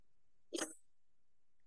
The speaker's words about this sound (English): And then he ends it by saying, Jeff, eat your heart out. And then does a really wet sniff.